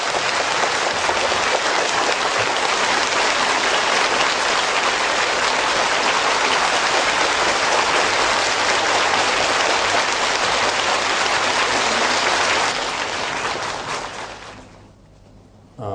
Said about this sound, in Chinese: 现在请大家起立，让我们以热烈的掌声欢迎索达吉堪布。